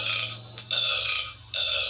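A long, drawn-out burp rumbles, rough and throaty, swelling louder in two surges with a brief dip between them. No one speaks over it.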